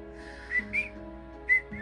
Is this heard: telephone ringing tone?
no